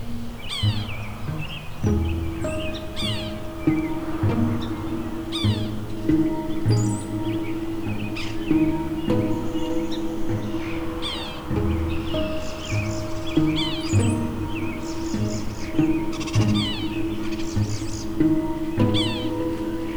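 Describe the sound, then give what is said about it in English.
A sapsucker gives repeated simple squeaks, nasal and mewing like a squeak toy, sounding again and again over twenty seconds with fainter high chirps and tweets scattered in the background. “The call of the sapsucker is a simple squeak, not unlike the sound of a squeak toy.”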